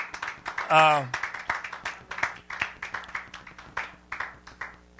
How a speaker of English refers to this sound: Give God a hand clap of praise while we're waiting here. Amen.